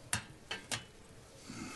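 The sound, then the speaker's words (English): Whiskey being poured into a glass: three sharp glassy clinks, the last two close together, followed by a soft low rustle, with no voices. “Pouring more whiskey.”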